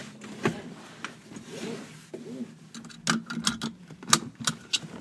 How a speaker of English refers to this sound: And just strap in your seatbelt.